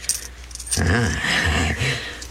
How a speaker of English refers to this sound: Got any diamonds, jewels, money, anything of value on you? A few coins. All right, give them to me. Hurry now, hurry.